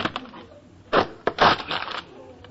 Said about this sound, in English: A loose wire? Oh, here's one. Oh, wait, it's stuck. I'll give it a few yanks.